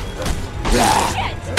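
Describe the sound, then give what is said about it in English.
A window is smashed through: a loud, noisy crash bursts out over a low rumble and lasts about half a second, with a brief ringing tone inside it before it dies down. “They break through one of the windows, and Carly grabs her gun.”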